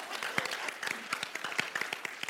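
Audience applause: many overlapping hand claps forming a steady, bright crackle of moderate loudness that continues throughout without any voices.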